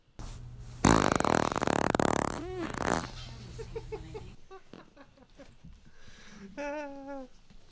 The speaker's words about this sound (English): you get to hear number three, the third fart again